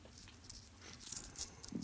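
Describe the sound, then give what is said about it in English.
Coins, including quarters, nickels, dimes and pennies, jingle in a pocket in a few short, bright metallic bursts, clinking and rattling unevenly, with no one speaking. “I've got some coins in my pocket.”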